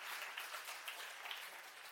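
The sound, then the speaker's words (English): A church audience applauds for God with dense, steady hand clapping that fills the whole two seconds, a continuous wash of many overlapping claps at a fairly even, moderately loud level, with no one speaking. “if you're going to clap, give him a good hand clap in here. We're clapping for God today.”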